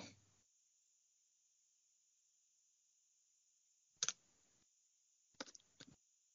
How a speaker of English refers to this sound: I'm typing with one hand here.